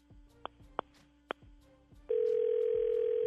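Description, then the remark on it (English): Three short electronic beeps, then a steady, loud telephone tone as an outgoing call rings through on the line, with no voices. “Let me see if I can get him on the phone.”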